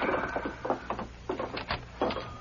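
A door being opened, heard as a series of short rattling, creaking bursts in an uneven rhythm, moderately loud over a low steady hum, with no voices.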